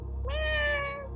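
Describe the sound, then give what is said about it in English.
A single drawn-out cat meow, clear, rising slightly in pitch then holding steady for about a second over a low background hum. “He just meows.”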